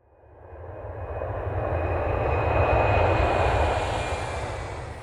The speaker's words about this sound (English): Our last sound goes with the word avión, or airplane.